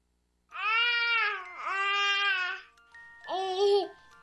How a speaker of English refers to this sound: To some people, the sound of a baby babbling doesn't mean much. But that's not necessarily true. By 6 months, they're combining vowels and consonants. By 9 months, they're trying out different kinds of sounds.